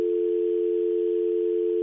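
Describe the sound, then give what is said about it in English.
A steady, unbroken telephone dial tone hums at a constant pitch and level for the full two seconds, with no voices or other sounds over it, as a phone call is placed live on air. “I'm going to call”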